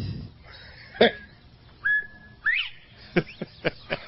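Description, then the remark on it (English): A person whistles a short tune alone as radio bumper music: a couple of sustained, gliding notes followed by a run of quick, sharp chirpy blips, fairly loud. “Bring back the whistle is what we're all about.”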